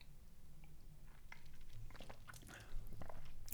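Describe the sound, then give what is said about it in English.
Someone sips a strong beer of 51.4% alcohol, with soft wet slurps and small mouth clicks scattered over a few seconds against a low, quiet background hum. No one speaks. “That first sip is very strong.”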